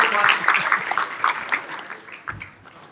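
Audience applause, a dense patter of many hands clapping at once, steady for a couple of seconds and then thinning out and fading toward the end.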